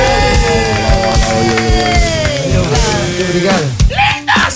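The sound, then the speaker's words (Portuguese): A loud crowd cheers and yells for guests from a band on a television program, a dense, sustained roar with rising and falling shouted voices, and a burst of noisier clapping-like texture near the end. “Muitas palmas pros nossos amigos do ….”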